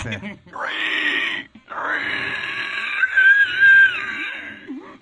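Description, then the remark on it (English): A person imitates a pig with two long, strained squealing bursts, high and nasal, the second rising into a piercing shriek before trailing off. “You want to do a pig impression? That was a good one.”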